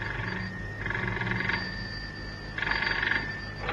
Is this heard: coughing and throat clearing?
no